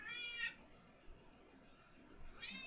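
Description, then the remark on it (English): An unhappy, uncomfortable male pet cat lets out two drawn-out, complaining meows, one at the start and another at the end, separated by a short quiet pause. The cries are fairly soft. “Oh, listen to the way he's not happy.”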